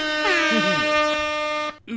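A single loud, sustained air horn blast blares for nearly two seconds with a harsh, buzzing tone, then cuts off abruptly, followed by a brief murmur.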